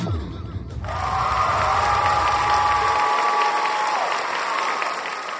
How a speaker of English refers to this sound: I love the new applause. I don't know how appropriate that is for today's episode, though.